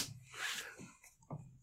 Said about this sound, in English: Why'd you slap your knee? It's a whole knee slapper.